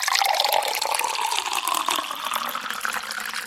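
Water runs steadily into a container from a water cooler, with a bubbling, glugging gurgle as it fills. The sound is fairly loud, and no one speaks.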